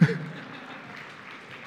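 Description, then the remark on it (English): The audience of King's Cross Church applauds, many hands clapping in a dense, steady wash that holds at a moderate level after a slightly louder start. “You can clap for yourself.”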